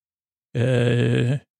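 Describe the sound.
A voice imitates a baking-show contestant's stressed heavy breathing as time is up, with a single loud, sustained groaning exhale lasting about a second, held at a steady low pitch, with no talking around it.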